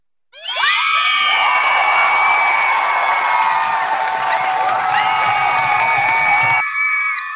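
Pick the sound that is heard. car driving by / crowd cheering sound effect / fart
crowd cheering sound effect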